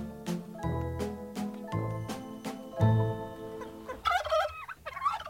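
A turkey gobbles in a quick, warbling burst near the end, loud, after several seconds of sustained ringing, chime-like tones.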